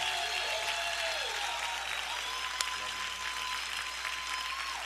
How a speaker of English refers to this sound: Come on and put your hands together for him. Come on, keep clapping until he gets up. He's never gotten this applause. I want you to give it to him until he gets all the way up here.